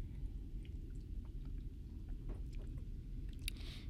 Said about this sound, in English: I had to take a sip of iced tea.